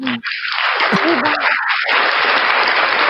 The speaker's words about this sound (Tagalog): Diba? Konting palakpak.